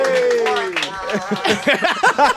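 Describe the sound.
A few voices cheer together in a brief, enthusiastic burst: a drawn-out falling whoop that breaks into quick, bouncy shouts of encouragement, lively and fairly loud throughout.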